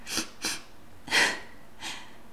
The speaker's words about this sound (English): Sniffling and barely able to string the words together, she continued to let loose into the night.